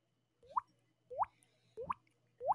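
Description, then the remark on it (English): A person imitates dripping water with their mouth in a class during a test, making four upward-sliding plopping sounds at a steady, unhurried pace, each a clear, wet-sounding blip separated by short pauses. “I used to make this water dripping.”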